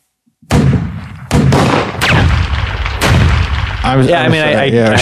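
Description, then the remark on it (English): Heavy gunfire rattles on without pause at a gun range, sharp loud bursts and booming shots stacked over each other, with shouting voices rising through the din toward the end. “Those bullets going the whole time, I'd probably be yelling too to try to talk over.”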